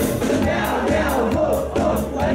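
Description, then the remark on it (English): A loud crowd chants "meow meow wolf wolf, let's get along" together in a steady rhythm over a ska song, the massed voices rising in regular bursts. “Any crowd that's willing to do meow meow wolf wolf, let's get along.”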